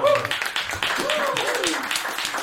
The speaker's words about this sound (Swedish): Stora applåd.